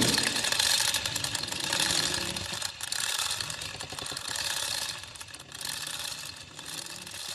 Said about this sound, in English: Flaming torches shut out from the stone walls to illuminate an underground cave-like dwelling as a garage door entry slowly closes by the aid of an heavy chain.